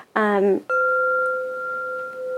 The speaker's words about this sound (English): So this is a flow chime. This is a space element.